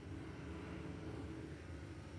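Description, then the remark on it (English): A jet ski's motor roars steadily without a break out on the open sea, with a broad rushing wash of spray and wind around it and no voices. “So remember the sea is chaos. That little jet ski is the Holy Spirit.”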